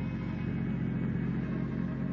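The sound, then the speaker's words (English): A car's engine rumbles steadily as the vehicle drives onto the Bates farm, a low, even drone that holds without change for the whole moment, with no voices. “I rejoined Constable Jed Bramler in the car and glanced over the paper as we drove onto the Bates farm.”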